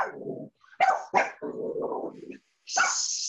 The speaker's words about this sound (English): No dogs. Wait, shush, you're ruining the podcast. You can edit that bit out.